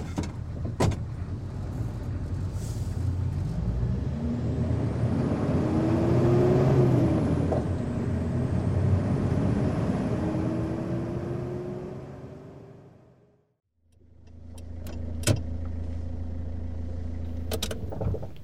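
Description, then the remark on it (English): A car engine idles and hums steadily for about thirteen seconds, somewhere in Houston, with a faint rising whine, then cuts out briefly before the low rumble resumes alongside a couple of sharp clicks. No one speaks. “Yes, sir, sitting in a car, somewhere in Houston.”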